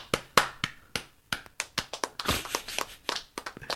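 A few people clap for several seconds, sharp uneven handclaps overlapping into a brief, scattered round of applause from a small group, with no voices.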